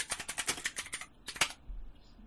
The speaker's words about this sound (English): I apologise for my keyboard.